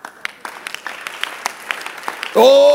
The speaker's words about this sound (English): Much as I don't like your clapping, let me stop to say, honey, it's not your husband that is misbehaving.